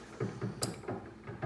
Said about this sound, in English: Ice maker. I don't know if y'all heard that or not. I heard it and I was like, who is knocking?